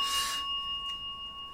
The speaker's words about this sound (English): Okay, now that we're back. Let's ring the news bell. Can you ring the news bell?